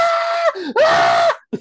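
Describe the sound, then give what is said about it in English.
A person lets out two loud, sustained screams, the second rising then holding, followed by a brief sharp breath or yelp at the end. “Just look at him, start screaming.”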